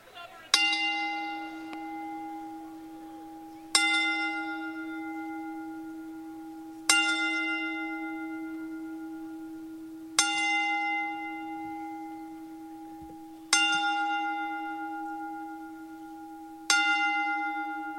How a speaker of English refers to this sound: everybody that's listening will ring the bell, and, you know, then we'll come back to the show. as we toll the bell 10 times.